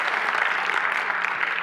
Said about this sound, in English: If you believe that, why don't you clap your hands and say, amen.